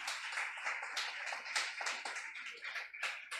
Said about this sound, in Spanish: ¿Cuántos dan gloria a Dios? Aplauda al Señor y dile al Señor, gracias, gracias, porque no durará.